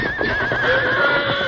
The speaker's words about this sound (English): There's a fire creeping in from three sides. The horses woke me up. Come on. We got to clear out of here. Unhitch the horses quick. They're crazy from fear now.